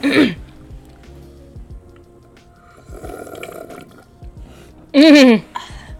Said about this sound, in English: Okay, and the ASMR with the liquid. Give me a cheers. Oh, yeah. Oh, bottom? Bottom. Nice. Okay, and we'll take a sip now.